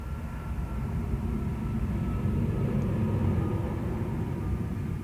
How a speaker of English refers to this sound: Another big car. I wonder what it's carrying. Something probably into Gisborne, I imagine.